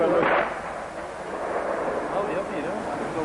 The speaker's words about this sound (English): the artillery battery that was firing was inside Lebanon. It wasn't from Israel itself, but it was Israeli.